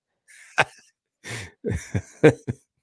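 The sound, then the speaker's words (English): A person coughs repeatedly, a burst of several harsh, loud coughs with a wheezy throat sound in between, and no talking. “As you guys can see, I'm coughing.”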